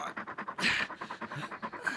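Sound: dog panting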